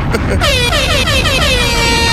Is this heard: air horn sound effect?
yes